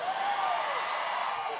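An audience in Austin cheers and whoops in a steady, dense roar of many voices that holds at an even loudness for under two seconds, with a few raised individual shouts poking through.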